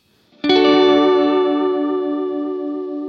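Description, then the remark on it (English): A single guitar chord strikes sharply and rings out for several seconds, its sustained tones shimmering with modulation and delay effects as they slowly fade. No voices are heard. “You can really hear the modulation on that.”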